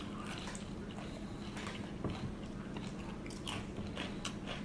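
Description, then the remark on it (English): Crunching as a salty crisp snack is bitten and chewed, with a few sharper bites standing out among steady, moist chewing over a low background hum. “Big crunch. Nice. Big crunch. Big crunch.”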